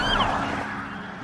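The siren of a new police cruiser from the Pima County Sheriff's Office wails in a brief gliding sweep over the low rumble of the car moving along twisted roads on a quiet morning, fairly loud and steady for just over a second.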